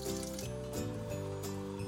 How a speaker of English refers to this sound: Slowly add 2 to 5 liters of water.